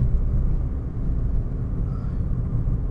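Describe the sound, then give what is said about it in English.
Steady, dense low rumble inside a car driving home from work, a constant engine and road drone with no voices and little change in loudness throughout. “Once again, I am recording from my car on the drive home from work, so I apologize for the recording quality.”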